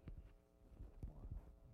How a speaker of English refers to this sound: My heart beating that much? It's whooshing or something.